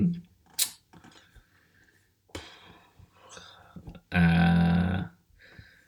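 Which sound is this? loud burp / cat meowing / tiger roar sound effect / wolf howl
loud burp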